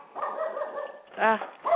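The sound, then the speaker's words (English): A dog whines and yips for a moment, then lets out two sharp barks in quick succession, loud and clear with no one talking over them. “Sorry, I'm stepping away from the dog.”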